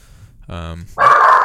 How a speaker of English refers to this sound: Whoa! Hello, dog.